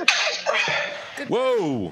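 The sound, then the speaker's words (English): A single loud sneeze: a breathy, hissing burst that ends in a voiced, rising-and-falling "choo," standing alone without any talking. “Salud. Bless you.”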